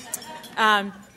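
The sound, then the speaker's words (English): Two light, high clinks of silverware against plates as people eat at an event in Sacramento, one near the start and one at the end, with a short voiced sound from someone in between. “I hear the little ching-ching of silverware on plates.”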